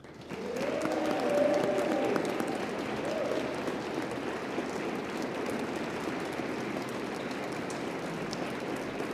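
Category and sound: crowd, audience applause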